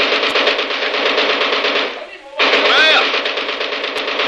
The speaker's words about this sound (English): By God, I fixed them good with machine gun. I saw them. I get machine gun. Now I show you how to fix them. This machine gun be good for them.